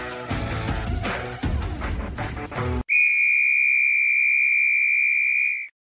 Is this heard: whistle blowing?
yes